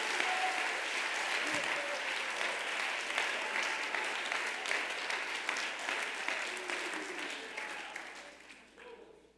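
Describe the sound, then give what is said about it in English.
An audience breaks into sustained applause, a hand clap of praise to the Lord, a dense wash of many hands clapping at steady strength for several seconds before tapering off at the end. Faint voices and calls mix into the clapping. “One more time, give the Lord a hand clap of praise in this room.”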